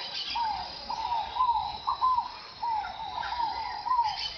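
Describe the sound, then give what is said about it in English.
A chorus of birds at sunrise near the Rio das Mortes in Mato Grosso, Brazil, calls steadily, with short, whistled notes repeating every half second or so over a higher, continuous wash of chirping and buzzing. There is no talking. “At sunrise, the River of the Dead comes alive with the sound of birds.”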